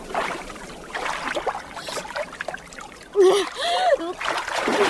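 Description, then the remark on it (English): Sea water splashes and washes against the shore in continuous bursts, with a brief voice rising over the noise partway through. “Trot him out of reach of the sea, at least, if you have any humanity left.”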